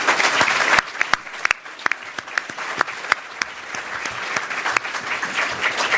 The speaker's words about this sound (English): Hey, everybody. Let's give this panel another round of applause.